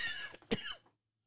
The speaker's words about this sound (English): And this coughing doesn't clear up.